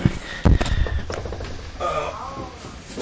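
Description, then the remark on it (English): A chair is shifted, with a few dull bumps and scrapes followed by a drawn-out creaking squeak, moderately loud. “Let me move my chair for a minute.”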